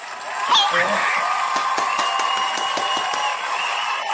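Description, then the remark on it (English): An applause sound effect played from a soundboard button: a crowd clapping in a dense, steady patter for about four seconds, with some cheering voices mixed in, holding fairly level throughout. “I have a little fancy button now because we got a little money and a little sponsorship. You hear that, right?”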